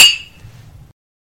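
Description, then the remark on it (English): A single bright clink of wine glasses touching in a toast, fairly loud, its high ring fading within a fraction of a second over a faint low rumble. “Stay weird. Drink wine. Cheers. Cheers.”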